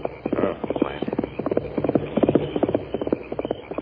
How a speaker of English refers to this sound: One pony. Yes, coming this way along the trail. We'll be heading for Sagebrush at this time of night. Him come from Parsons' camp.